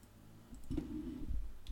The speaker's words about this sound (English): Magic mushrooms. Hold on. Magic. Hold on. Keyboard's acting funny again. Magic mushrooms wiki.